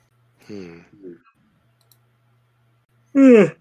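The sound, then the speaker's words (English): A person yawns audibly, with a couple of short, soft voiced breaths first, then a loud, drawn-out yawn that slides down in pitch near the end. A faint low hum runs underneath. “No yawning. Yawning costs you XP.”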